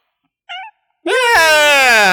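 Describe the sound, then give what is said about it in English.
A cat meows into a microphone: a brief, thin chirp, then after a short pause a loud, drawn-out, strained yowl that fills the rest of the moment. “Let the cat go. Let the cat go.”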